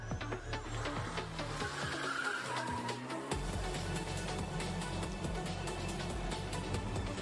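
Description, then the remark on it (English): Racing cars drift with sustained, squealing tires over a steady engine roar, the screech wavering and continuous for several seconds, with no talking. “I feel that way about tiny cars. Like. When they drift, hot rods. I love drifting.”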